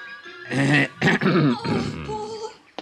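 cough

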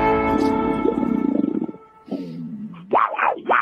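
ferocious big cat roar

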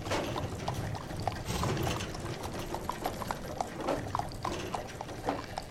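horse hooves clip-clopping

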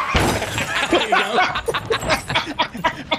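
car crash sound effect

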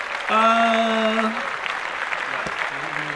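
clapping

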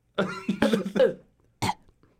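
small cough

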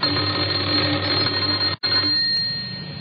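doorbell ringing

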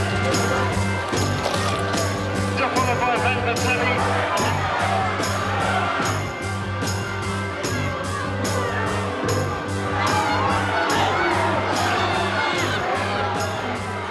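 crowd cheering

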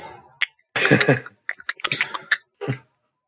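computer keyboard typing

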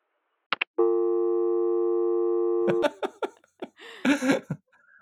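telephone busy signal

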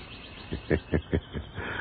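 sparrow chirping

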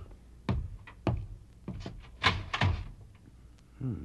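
door opening and closing

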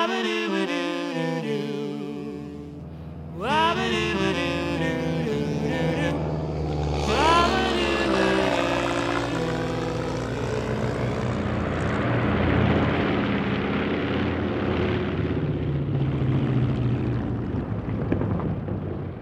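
propeller airplane in flight

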